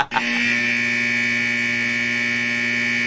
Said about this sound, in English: I would like to point out... Extra long buzzer today. It was awesome. No, it's the normal length. Oh, it's just usually interrupting us?